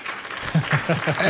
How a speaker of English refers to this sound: Yeah. There's a lot of applause. Yeah. Man. People really like you.